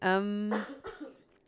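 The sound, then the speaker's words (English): A drawn-out voiced sound breaks into two rough, breathy coughs in quick succession, moderately loud and then trailing off into quiet. “so I can cough far, far away from the mic.”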